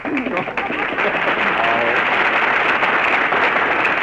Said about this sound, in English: All right, folks, you made your applause. Now lie in it.